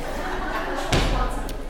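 The back door is pulled straight out and shut at a Bible study gathering, with a single solid thud about midway through, fairly loud, over a steady murmur of room noise.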